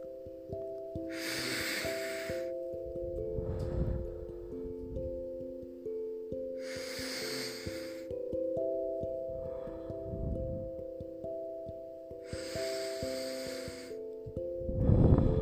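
Slow, deep breaths drawn in and released at a steady, unhurried pace, about three full cycles, over a soft sustained musical drone.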